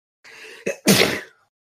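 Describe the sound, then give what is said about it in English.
A single sneeze: a breathy inhale building for about half a second, then a sharp, loud burst that trails off quickly. No talking. “Bless you.”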